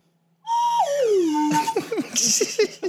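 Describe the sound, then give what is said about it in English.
A sticky slide whistle sounds a loud, steady note that lurches downward in uneven steps, then breaks into choppy, sputtering bursts of noise. “This is the stickiest side whistle. I got that on eBay.”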